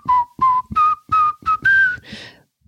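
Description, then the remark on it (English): Someone whistles the melody of a pop song, a short, bouncy tune of about seven quick clear notes stepping upward in a steady rhythm, with a soft breathy tail at the end and no talking. “What are you whistling? Aha, ….”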